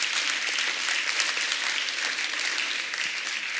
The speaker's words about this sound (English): Let's give him a clap, he's amazing.